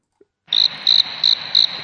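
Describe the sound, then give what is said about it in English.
Crickets chirp in a steady, high-pitched trill, with four brighter pulses spaced evenly after a brief silence, clear over a soft noisy background. “Crickets, please. Crickets.”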